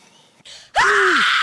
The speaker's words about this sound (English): Fuck. And he screamed exactly as my name came up.